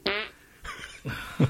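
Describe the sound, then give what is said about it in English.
During a fart battle, a voice imitates a wet, sputtering fart with the mouth: a loud buzzy burst up front, followed by two shorter, softer raspy blurts, alone with no talking. “Well, that's why I was making fart sounds.”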